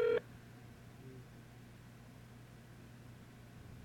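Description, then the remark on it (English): A single short telephone keypad tone sounds at the very start, then fades into a low, steady background hum with no talking. “I'm going to give out his number.”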